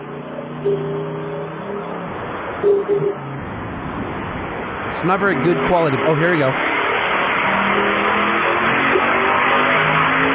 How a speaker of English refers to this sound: Yeah, he sent a voicemail and he's like, and he teased us with a sound effect. What's that noise? It was the car on a dyno, right?